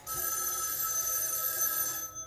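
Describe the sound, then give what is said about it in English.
A telephone rings in a horror film scene, a call from the killer, with a bright, steady metallic bell tone that holds for about two seconds before cutting off, clear with no voices. “the scene that sets off most of the action for the original Black Christmas, the phone call from the killer”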